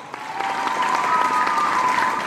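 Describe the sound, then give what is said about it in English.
One person claps rapidly and steadily right into the microphone, the sharp slaps running at an even pace for a couple of seconds, with a faint steady tone lingering underneath. “Sorry, I know you don't like me clapping on mic.”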